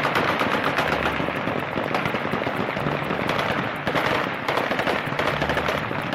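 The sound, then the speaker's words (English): Dense, sustained gunfire from Kalashnikov rifles, fired into the air by the Taliban in Kabul to celebrate the withdrawal of American troops as the last plane flew out. Overlapping bursts and single shots form a loud, continuous rattling barrage. “They're firing off their Kalashnikov rifles and celebrating because they do see it as a victory.”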